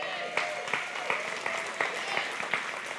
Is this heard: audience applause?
yes